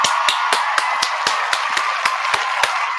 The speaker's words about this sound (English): Let's go ahead and continue the round of applause so we can give some to Premier Cocktail.